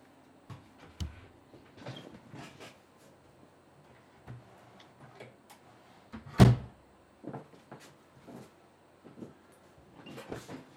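office door being closed

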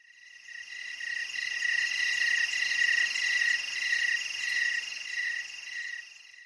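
crickets chirping sound effect

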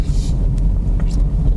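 car driving

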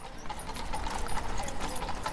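horse hooves clip-clopping

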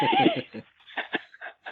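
horse neighing

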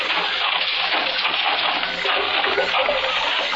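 river water flowing

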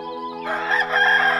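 rooster crowing

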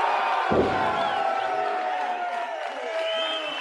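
audience applause and cheering

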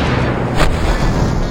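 explosion

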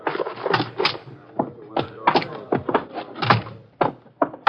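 door being opened

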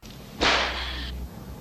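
whip crack

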